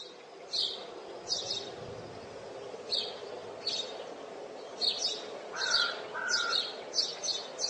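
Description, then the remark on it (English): Bright, high bird chirps repeat in short bursts, a quick two- or three-note pattern recurring every second or so, with a couple of lower whistled notes near the end, over faint background hiss. “And then I place this bird.”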